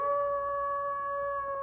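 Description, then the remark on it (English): A wolf howls in one long, steady, held note with a clear, tonal ring. No voices accompany it, and the sound stays at a constant moderate loudness throughout. “And today we've landed in Belgium, where after more than 100 years, farmers are legitimately crying, wolf!”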